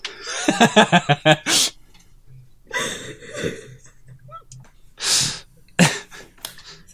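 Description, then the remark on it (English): Someone blows their nose in a few loud, rushing bursts, with a quick run of laughter at the start and some quieter breathy sounds between blows. “Oh, I gotta blow my nose.”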